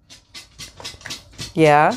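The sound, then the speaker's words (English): A dog pants in quick, rhythmic breathy bursts with faint shuffling, then a sudden loud, tonal vocal sound cuts in at the end. “Yeah, and you know that's where how we get the dog kibble, right?”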